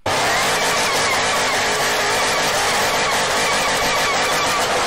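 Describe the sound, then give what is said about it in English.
A powerful Ford GT500 engine roars at high revs during a burnout in Detroit, with a dense, harsh wash of noise, likely screeching tires, held loud for about five seconds without a break. “That was a GT500 doing a burnout somewhere in Detroit.”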